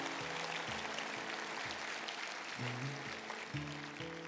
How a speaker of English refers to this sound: Church, give these people a round of applause. Just praise. Come on. Thank you, Lord.